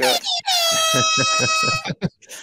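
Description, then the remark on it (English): A loud, brassy air horn blares for about a second and a half, preceded by a short burst and followed by a few clipped honks, with a rhythmic thumping pulse underneath. “Airhorn?”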